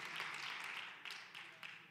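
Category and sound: crowd, audience applauding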